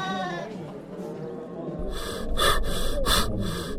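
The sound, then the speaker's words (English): Hollow, rasping breaths drawn through a gun barrel by someone concealed beneath the soil, two or three loud pulses following a brief whining, bleat-like tone at the start, with no talking. “I need only remain concealed beneath this soil, continue breathing through the gun barrel, and evidence will soon be mine.”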